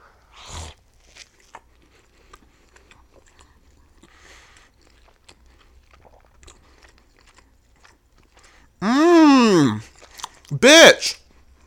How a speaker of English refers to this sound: I'm going to start with a bite from this burger, so... In real time, I could tell you how it is.